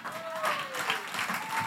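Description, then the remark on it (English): An audience claps steadily in a dense, continuous patter, applauding a person who baptized over 50 people that day, with a faint sustained vocal tone or cheer drifting through the applause. “Come on, yeah, you can clap for that.”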